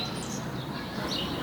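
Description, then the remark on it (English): Faint bird chirps come through a steady wash of outdoor ambient noise in a park, a few short high calls rather than a clear song. “Oh, look at that bird.”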